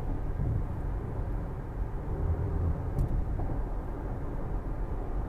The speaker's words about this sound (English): All right, the first pocket of traffic's coming in. I'm going to experience a little bit of turbulence.